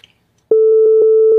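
After half a second of near silence, a loud, steady censor beep cuts in at a single mid pitch and holds unbroken to the end, with no voices.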